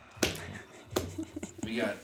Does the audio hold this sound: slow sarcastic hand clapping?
yes